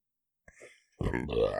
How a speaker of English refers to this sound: We just burped in stereo.